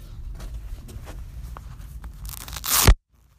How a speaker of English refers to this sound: Ooh. That's Velcro on my shoes. That's Nike, dog. No. Nike. That's Dr. Scholl's from Walmart.